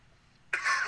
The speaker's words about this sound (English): Big cough, though. Big cough.